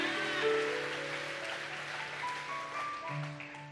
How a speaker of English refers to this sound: Come on, give the hand clap to the Lord Jesus this morning.